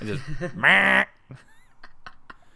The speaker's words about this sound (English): we have this bumper to go between scenes as, like, kind of the transition, and it's one of the Love Ducks kind of quacking. I found it rather abrupt because the quack sound effect that they use is very harsh.